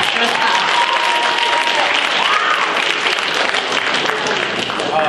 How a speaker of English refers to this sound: and you need to, if you want to clap, you can clap.